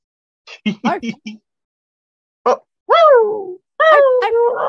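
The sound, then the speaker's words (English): A trans woman on a call makes playful cat girl noises: a few quick chirpy syllables, a pause, then two drawn-out, sliding meows, loud with no other talk. “You get three trans women on a call, you're gonna get cat girl noises.”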